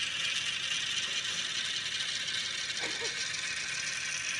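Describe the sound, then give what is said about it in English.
Coins clatter steadily through a coin machine, a dense, continuous metallic rattling and ticking that holds an even loudness throughout, with a brief ringing note partway through. “Oh, that little clinking sound is just so satisfying.”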